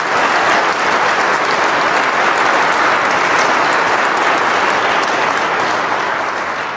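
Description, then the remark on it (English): An audience claps steadily and loudly for several seconds, a dense wash of many hands with no pauses, tapering slightly at the end. No one speaks over it. “Yeah, you can clap.”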